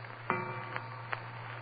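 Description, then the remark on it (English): A mantel clock strikes three quick, evenly spaced chimes, the first leaving a lingering metallic ring. The strokes are fairly soft over a steady low hum, with no voices. The clock is striking seven o'clock. “And then the clock on the mantel behind me began striking.”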